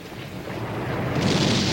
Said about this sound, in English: The charges fire in precise sequence. The building folds away from its glass neighbor and collapses exactly as planned.